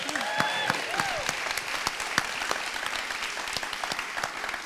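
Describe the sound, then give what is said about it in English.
A crowd at Wellhouse applauds steadily with dense, continuous clapping, cheering a state winner who will compete in nationals, while a few rising and falling whoops and cheers ring out near the start before the clapping carries on alone. “Yeah, so that's a big deal, and that is awesome, and we're cheering for you in June.”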